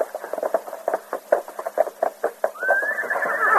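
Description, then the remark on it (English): A quick, steady run of hoof clops rings out, then a horse lets out a high, rising whinny that carries over the last few hoofbeats. “Here's my horse. Steady for it.”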